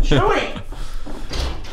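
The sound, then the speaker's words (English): A voice speaks briefly, then a rear door opens with a short rattling scrape and a soft clunk near the end, as a dog is let out. “Hang on, I'm just going to let my dog out.”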